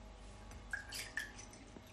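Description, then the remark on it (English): 284 millilitres of water being poured into a measuring jug for a citron water recipe, heard as a soft watery trickle with two distinct droplet-like plinks, fairly quiet, with no one speaking. “We need to measure out the water.”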